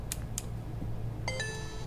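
Two quick plastic clicks, then a brief, bright two-note electronic chime as a BrailleSense braille device signals that an SD card holding United States maps has been inserted, heard over a low steady hum.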